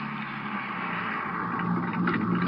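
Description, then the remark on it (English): A car's steady engine and road rumble as it pulls over on a highway near Odessa at almost 4 a.m., a continuous mid-level drone with a slight swell near the end, with no voices. “Guess I can stop any place on this highway.”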